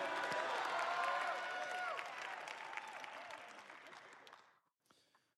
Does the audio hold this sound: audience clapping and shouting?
yes